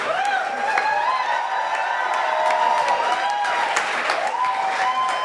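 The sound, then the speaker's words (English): A sustained round of audience applause as an audience member is called up onto the stage, dense and steady for several seconds, mixed with cheering and a few whoops rising above the clapping. “That's a better round of applause than we got.”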